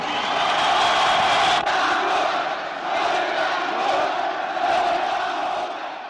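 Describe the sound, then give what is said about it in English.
A huge crowd of tens of thousands cheers and roars together in Omonia Square, Greece, at a campaign rally for the first free elections where Theodorakis speaks, a dense, loud wall of shouting voices that swells and holds steady for several seconds with one sharp click partway through. “And the way they cheer when he tells them, they have the tanks, but we have the music and the ideals.”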